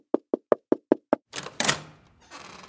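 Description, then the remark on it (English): Six quick, evenly spaced knocks rap on a wooden door, crisp, as a stranger knocks at the door, followed by a brief burst of scraping, rattling noise that fades away. “And shortly after the Rebbe left, a stranger came and knocked on the door.”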